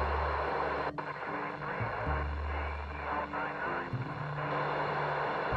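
An off-frequency amateur radio transmission: steady static hiss with a garbled, warbling voice whose low tones shift and buzz unintelligibly, continuing throughout at moderate loudness.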